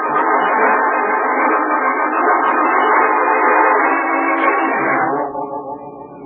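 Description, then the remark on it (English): A train's loud, sustained horn-like blast fills the first five seconds, then drops away into a lower rumble of a train in Grand Central Station, with no voices. “Why, at Grand Central Station, of course. That's where we begin. Grand Central Station.”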